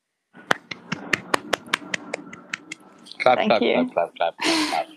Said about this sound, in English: Clap.